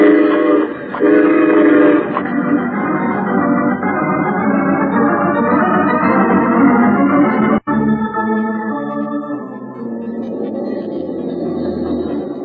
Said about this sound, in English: Let's be sure we're on that train when it pulls up.